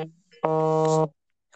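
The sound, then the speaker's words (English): A phone signalling an incoming call: one steady, buzzy electronic tone lasting about half a second, low-pitched with a rich harmonic edge, fairly loud, with faint murmurs just before and after. “I think my phone is ringing with another call.”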